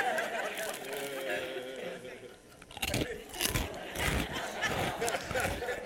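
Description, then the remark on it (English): Loud crunching of potato chips being chewed with an open mouth, irregular crackly bites that grow sharper and busier after a quieter start. “I'm chewing with my mouth open so you can hear it.”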